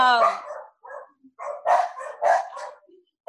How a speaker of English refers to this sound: I'm sorry, my dogs. Ignore them. I knew it was going to happen. I knew it. I'm so sorry. Please contain the dog.